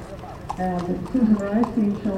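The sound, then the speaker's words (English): Horse hooves clip-clop in a steady rhythm at moderate volume at a horse show, blending with a continuous tonal voice-like hum that runs underneath the whole short stretch. “Agricultural and industrial exhibits drew spectators during that first event, but it appears the most popular activity was something that's still a favorite for a lot of people, a horse show.”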